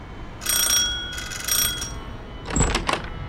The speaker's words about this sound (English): So I rock up to this house, and I shit you not, it's actually from the Tudor times. Her front garden is bigger than my entire flat. I ring the doorbell, and she opens the door, smiling.